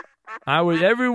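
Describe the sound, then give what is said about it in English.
A loud duck quack: two short nasal bursts, then one long, drawn-out honking quack that fills most of the moment. “I fed the ducks over the weekend. The ducks love me.”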